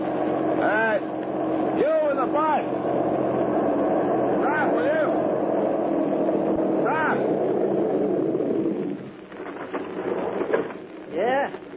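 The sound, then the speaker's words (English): A bus engine rumbles steadily, then eases off and drops to a lower idle near the end as the bus comes to a stop, with brief squealing tones riding above. “Turn the bus around. We're going where you just came from.”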